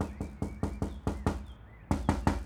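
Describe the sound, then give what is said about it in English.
Loud knocking on a door: a quick series of sharp, evenly spaced raps, a brief pause, then another burst of insistent knocks. No voices. “Etha answered the door on the third knock, fizzing with annoyance.”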